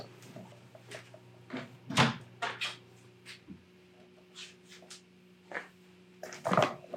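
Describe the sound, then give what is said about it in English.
A door is pushed shut with a solid thud near the end, after a few scattered clunks and handling knocks, all over a steady low electrical hum with no talking. “Let me go close that door.”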